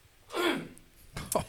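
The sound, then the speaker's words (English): A raspy throat-clearing cough, followed a moment later by a second shorter, harsher burst, with no talking in between. “So we lost the budget for the cough mic thing.”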